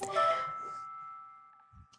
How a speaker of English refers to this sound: That was really interesting timing. I don't know if you heard that little chime on my computer.